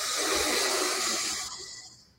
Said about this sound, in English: And I'm breathing in.